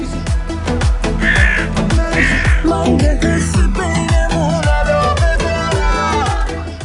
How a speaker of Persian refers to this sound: این برای چی الان؟ چون صدای من گرفته قارقار میذارید؟ فقط برای مریم باید قارقار بذارید، اون صداش بد میگیره.